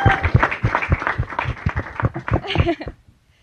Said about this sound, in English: Everybody who's here to support Sangram, go ahead and give him a round of applause. Woo!